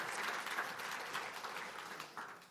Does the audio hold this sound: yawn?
no